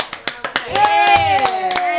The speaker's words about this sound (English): Okay, we're going to let them... Do that loud clap. Yay!